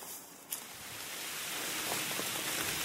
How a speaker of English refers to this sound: I just thought I'd share with you us hunkering down under a tree because the rain has started again. I hope it's just a shower because nothing was due for quite a while.